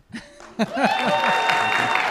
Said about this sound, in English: And then we pause for applause.